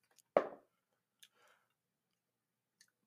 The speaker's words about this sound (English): I rolled a D20 for some reason.